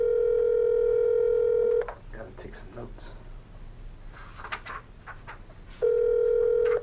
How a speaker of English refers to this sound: So, without further ado, I'm going to go ahead and ring him up. We'll set the phone right here. You guys will be able to hear loud and clear. You may be able to hear better than I can. So here we go. We're going to give him a call.